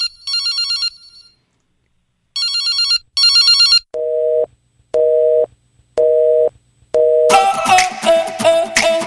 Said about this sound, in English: When I dial the phone and it's ringing